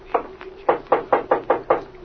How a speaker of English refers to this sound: Well, here we are. Come on in the living room, and I'll knock on Mrs. Croft's door. Okay, Rip.